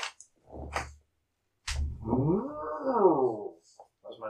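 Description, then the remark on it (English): A person makes a drawn-out mooing noise imitating a cow, a low, throaty tone that swells and falls for about two seconds. A short breathy grunt comes before it and faint clicks follow. “That was my cow noise of appreciation.”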